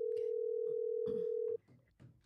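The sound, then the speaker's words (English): A loud, steady telephone ringback tone from a phone call being placed hums for about a second and a half, then cuts off abruptly, leaving faint murmuring voices and background noise. “Can I just make one phone call?”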